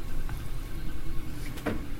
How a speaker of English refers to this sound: What is that off to our left that's making, like, the whirring sound? That is a 3D printer. Oh.